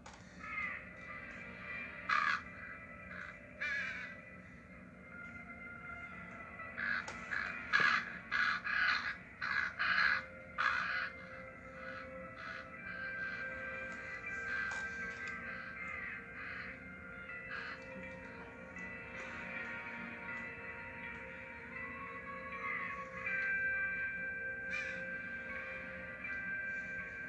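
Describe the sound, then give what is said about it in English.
A crow caws repeatedly, harsh rasping calls coming in uneven clusters and growing busiest near the middle, over a steady low mechanical hum in the background. No one speaks. “There's a bird.”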